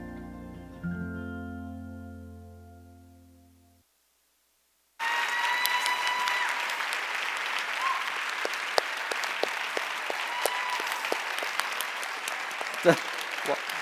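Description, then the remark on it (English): A sustained musical chord fades out into a brief silence, then a large audience bursts into steady, loud applause that continues to the end, dense clapping with a few sharper claps standing out. “One more round of applause for Josh, not us.”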